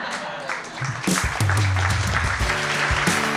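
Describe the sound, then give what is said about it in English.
A crowd of children on a barge and a roof erupts in cheering and clapping after a jump from the roof into the water, sustained and loud, with bright overlapping voices whooping over dense applause that swells after a brief quieter start. “A salty splash, cool silence, then cheers and applause from all the kids on the barge and the roof.”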